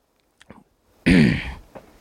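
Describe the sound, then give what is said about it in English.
A few faint mouth clicks and a sip of beer, followed by a loud, breathy, satisfied exhale, then a soft click trailing off. “Sip a beer for the speaker before Act Two, the twist.”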